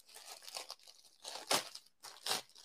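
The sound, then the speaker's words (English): Dry packing paper crinkling and rustling in irregular bursts as it is pulled and handled while unpacking a package sent from overseas, with two sharper crackling swells near the middle and end. No one speaks. “Some paper in here.”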